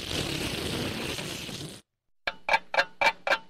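A steady clock ticking, five crisp, evenly spaced, fairly loud ticks, following a brief stretch of hissy noise and a moment of silence.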